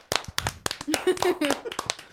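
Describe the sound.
One person claps quickly and steadily into a microphone, around nine sharp, loud claps in two seconds, while voices chatter briefly over the middle of the clapping.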